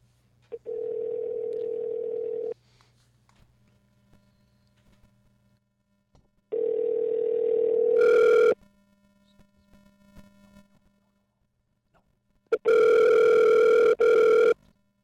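An outgoing phone call's ringback tone sounds in three steady, fairly loud pulses separated by silent gaps, the last two swelling brighter and harsher, with no talking.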